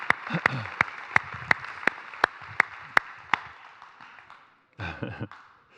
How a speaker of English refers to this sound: Nobody claps alone in this church, by the way.